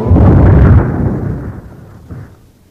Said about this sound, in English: Suddenly, there appeared a large cyclone that picked the house right up off its foundation with Dorothy and Toto still inside. It carried them high into the sky, and after several days, the house landed with a crash.